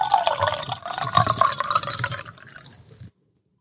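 Eagle Rare bourbon pours into a glass in a steady, gurgling stream for about three seconds, bright and splashy at first, then thinning and stopping abruptly. No one speaks.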